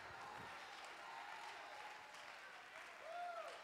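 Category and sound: crowd, audience clapping and cheering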